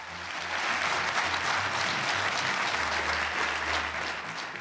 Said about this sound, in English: When the decision was announced, the parliament erupted into applause and gave her a standing ovation.